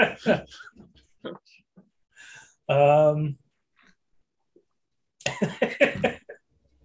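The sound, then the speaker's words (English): A single loud, voiced cough-like burst, sounding like a person saying or imitating a cough, set between short stretches of talking. “Cough, cough is not a name.”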